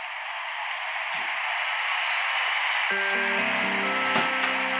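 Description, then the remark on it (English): An alarm's wake-up sound: a steady, loud wash of hissing noise, then low sustained tones come in partway through, stepping between a few pitches like a slow melody. No one speaks. “I can understand that, although having said that, my wake-up sound is this.”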